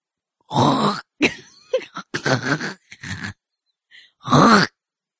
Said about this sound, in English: It just sounds like you're ready to hawk a loogie. Oh. This is a throat thing.